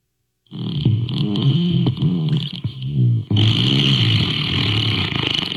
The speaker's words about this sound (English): We'll see if Alexa will play along. Alexa, ask for a fart.